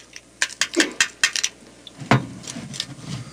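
Crushed ice is scooped into a lowball glass: a quick series of sharp, bright clinks and rattles, then a softer crunching slide as the ice settles. No one speaks.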